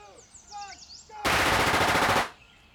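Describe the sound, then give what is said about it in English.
Gunfire erupts in a loud, rapid volley of cracking shots lasting about a second, breaking a quiet backdrop of chirping birds, then cuts off abruptly. “In the silence, gunshots crack the air.”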